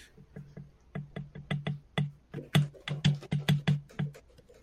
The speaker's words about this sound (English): I want you to know, I got a new keyboard, so I didn't have to hear people griping about it, and somebody's over there just tapping away on it.